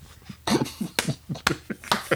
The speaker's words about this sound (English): Hooray, let's clap for Kyle Korver.